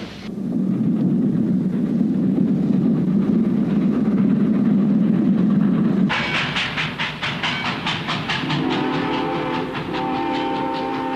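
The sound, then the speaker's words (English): A train rumbles along with a deep steady roar, then breaks into a loud, fast rhythmic clatter of wheels over rail joints, with a sustained horn-like tone joining in near the end. “The one sure way to get someplace is on a train.”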